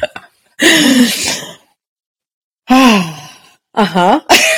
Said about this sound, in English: You like that? You like that little gasp?